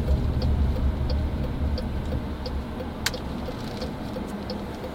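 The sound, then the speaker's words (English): Busy road traffic heard from inside a car: a steady, low rumble throughout, with faint, regular ticking like a turn signal and one brief sharp click partway through. No one speaks. “Traffic is crazy, right?”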